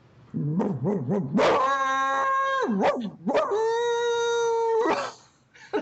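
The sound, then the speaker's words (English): A person loudly imitates a hound dog howling, starting with a few wavering, yodel-like yips, then two long sustained howls that rise and fall, with no other talk. “I do a mean hound dog.”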